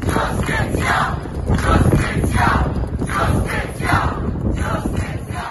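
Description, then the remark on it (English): A large crowd gathered outdoors outside a building during an emergency cabinet meeting, waiting for the ministers to come out. It shouts and roars in repeated surging waves, a dense wall of voices that stays loud throughout with rhythmic swells of yelling. “Later in the day, the Prime Minister called an emergency cabinet meeting, and a crowd gathered outside waiting for them to come out.”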